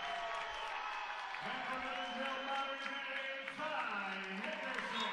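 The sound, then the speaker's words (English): A crowd at a wrestling match cheers and shouts steadily as a 120-pound final bout gets underway, a loud, dense wash of many voices with a few higher calls rising above it for the whole stretch. “And you can hear the cheer of the crowd, and away we go.”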